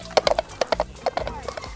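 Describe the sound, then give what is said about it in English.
Donkey hooves clip-clop in quick, uneven clusters of hard knocks, about a dozen in all, growing a little softer and more muffled toward the end as they move away. “I will now saw this donkey in half with a butter knife. I'm out of here.”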